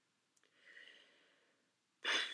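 Sniffling with no voices: a small click, then a drawn-out, soft breathy intake lasting about a second, and after a short pause a louder, sharper sniff.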